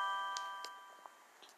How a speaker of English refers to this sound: Sorry about that notification.